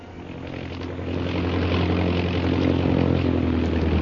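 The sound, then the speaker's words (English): The propeller engine of Shanghai Lil's big black seaplane drones steadily as it circles a plantation and lands on a river, swelling louder after the first second and holding a low, throbbing tone with a rough, buzzing edge, no voices present. “Shanghai Lil's big black seaplane circles the plantation and finally comes to rest on the ebony surface of the river.”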